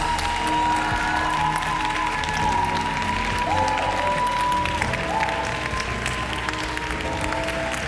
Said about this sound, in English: So if you're not bored worshiping the King of Kings, clap your hands for 30 seconds and let's just love Him.